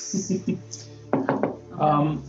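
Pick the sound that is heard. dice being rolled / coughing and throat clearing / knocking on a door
knocking on a door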